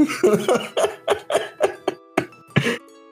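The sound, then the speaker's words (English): A rapid coughing fit, around nine harsh coughs in quick succession, loud and raspy, with a final strained cough after a brief pause. “This is cough number 84.”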